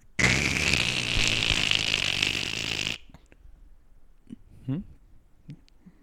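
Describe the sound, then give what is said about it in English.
A voice imitates a man slurping soup straight from a bowl: one long, loud, noisy slurp with a faint whistling edge for about three seconds, then a few short, soft gulping and smacking sounds. “I call this one man drinking a bowl of soup without a spoon.”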